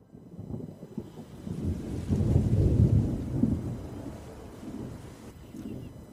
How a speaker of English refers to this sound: Right after 5 minutes, I see the rain. And you can see that how the rain is coming now after they stop everything. This is amazing.